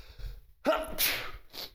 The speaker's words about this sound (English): Excuse me, I'm sneezing now.